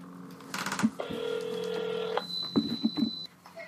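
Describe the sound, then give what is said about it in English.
A phone call being placed to a teacher in Chicago: a few quick dialing beeps, then a steady electronic ringing tone for about a second, followed by a thin high tone and some clicks, with no voices. “Yeah, let's give her a call.”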